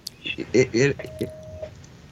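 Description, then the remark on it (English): A phone rings briefly with a single steady electronic tone lasting under a second, partly under a person talking. “You know, this is just the phone that I have on. It's always That's okay. on for all.”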